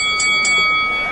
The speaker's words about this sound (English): And almost as soon as the bell rings, you see this bugbear lay into this behemoth of a cyclops, and he's just pounding at his, trying to take out his kneecap.